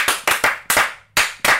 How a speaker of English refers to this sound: And happy and we know it. So we clapped our hands.